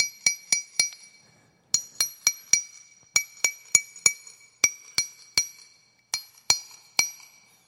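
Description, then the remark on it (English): Sharp metallic taps of a hammer striking a chisel to shape a stone for a wall, coming in quick bursts of three or four with short pauses between, each hit ringing brightly. Clear, with no voices. “They grab a hammer. And they grab a chisel. They put that stone there and they”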